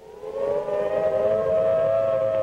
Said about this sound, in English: The video tells us that you'll be listening for some klaxons and there'll be warnings and things like that,